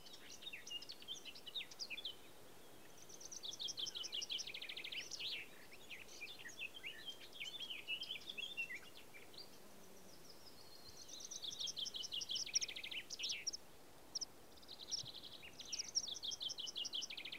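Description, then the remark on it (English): High, thin bird calls and rapid trilling phrases come in repeated bursts, some clear, others fainter, over a quiet outdoor background with no talking: meadow pipits in the sky and a common sandpiper calling along the edge of a lake, Loch Fia. “We've got meadow pipits in the sky around us, and the common sandpiper is still making noise along the edge of the lake.”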